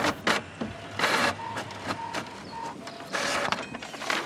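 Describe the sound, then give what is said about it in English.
Paper crackles and rustles as a paper list is snatched up and a page of it flipped, with several short, crisp bursts followed by a longer scraping swish. “Oh, grabbing the list.”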